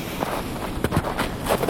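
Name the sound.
footsteps crunching in snow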